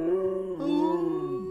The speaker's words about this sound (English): Can you give me a howl so we can harmonize this? Give me a howl. Ooh.